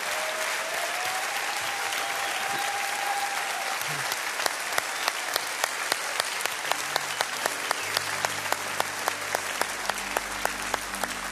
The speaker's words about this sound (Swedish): Ska vi bara tacka Gud för allt detta goda och bara tillbe honom med en rungande applåd.